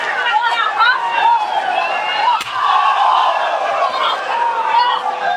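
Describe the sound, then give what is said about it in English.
A single sharp chair shot cracks out midway as Sasha Banks strikes Becky Lynch in the spine with a chair during a wrestling attack, cutting through a constant, noisy arena crowd that chatters and shouts throughout. “Natalya taken out, and now Becky Lynch, chair to the spine.”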